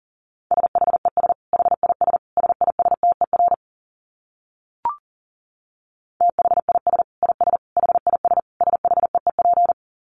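Fast Morse code at 40 words per minute: a steady mid-pitched beep keyed into rapid dots and dashes, sent in two long bursts separated by a brief pause with one soft click.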